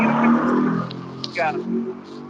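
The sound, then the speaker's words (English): A motorbike engine whines loudly past, its pitch sweeping as it speeds by, with a voice murmuring faintly underneath. “I just heard a motorbike go flying by you.”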